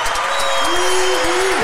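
A short burst of applause for a guest who has just arrived on the show, a dense patter of clapping that stays steady throughout, with a faint tonal whine running underneath.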